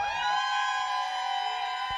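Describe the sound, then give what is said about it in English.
A crowd at the Inside Out museum event cheers and whoops for a DJ in a sustained, high-pitched roar of many voices that stays loud and steady for the whole two seconds, with no speech over it. “One more cheer for ….”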